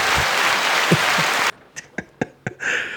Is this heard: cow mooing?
no